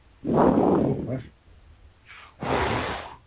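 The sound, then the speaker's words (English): Heavy, close-up breathing into a phone: a long, loud exhale followed by a quicker in-and-out breath, harsh and noisy, with no talking. “Who's breathing into the phone so hard?”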